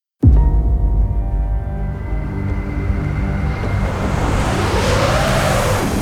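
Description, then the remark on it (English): A car engine starts abruptly and runs steadily, a low rumbling drone with harmonic whine that builds as the lone car climbs a snowy mountain road in a storm, with a swirling, shifting tone later and no talking. “A lone car wending its way up a majestic snowy mountain.”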